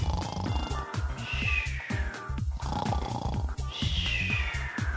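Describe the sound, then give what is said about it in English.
A voice imitates loud snoring: two long, rattling inhales with a buzzy, purr-like texture, each followed by a high whistling exhale, with no talking. “And they were both sleeping in their rooms, snoring away.”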